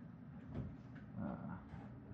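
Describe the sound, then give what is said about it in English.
A closet door, apparently to an empty closet, slides open with a low, rumbling scrape that swells twice over a couple of seconds, alone with no voices. “Who opened the door? Marza. Okay, so you open what seems to be a closet.”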